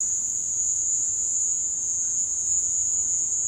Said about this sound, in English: took some recordings that he had of crickets and played them over a loudspeaker inside a room so he could capture the echoes. Here's what it sounds like.